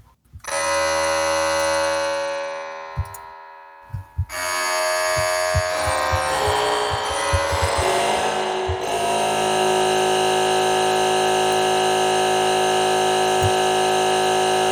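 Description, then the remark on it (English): A loud, steady mechanical drone with dense harmonic whine from an air compressor that has been switched on, briefly interrupted then resuming with rattling clicks and knocks before settling into a continuous hum. No one speaks. “All right, the air compressor is on.”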